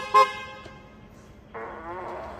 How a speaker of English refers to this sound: What about your Tesla horn sound? What, the fart? Oh. Yeah, that you were farting at people for a year and didn't even know it.